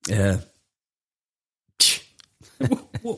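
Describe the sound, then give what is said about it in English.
A short voiced sound, then a pause, then one sharp, breathy cough bursts out loudly, with people starting to talk just afterward. “I'm coughing to get their attention.”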